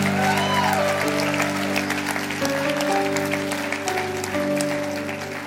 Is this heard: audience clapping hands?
yes